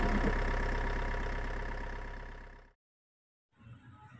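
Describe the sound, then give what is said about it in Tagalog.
A vehicle engine idles with a steady, rumbling drone as someone boards, then fades and cuts out, followed by a brief silence before a softer low rumble returns. “Teka lang po, nasakay po ako.”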